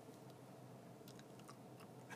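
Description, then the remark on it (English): Quiet chewing of gum, with soft wet clicks and smacks coming irregularly over a steady low background hiss. No one speaks. “sure is chewing that gum.”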